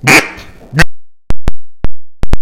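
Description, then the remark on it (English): A duck call is blown to imitate a raspy mallard hen quack, loud, followed by a string of short, sharp quacking blips in an uneven rhythm. “A mallard hen has just the normal vocalization.”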